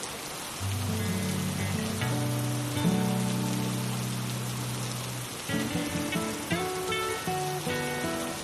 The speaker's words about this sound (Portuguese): É uma chuva pesada, forte, que vem lavando essa área que estava precisando tanto dessa chuva. E você aprecia esse momento, sentindo o cheiro da chuva. Ouvindo o barulho das gotas batendo no chão.